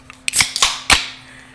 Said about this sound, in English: Yeah, so first of all, we're going to crack open these beers.